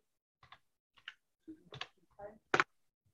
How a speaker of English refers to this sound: And excuse me, I'm gonna drink and it's gonna be loud.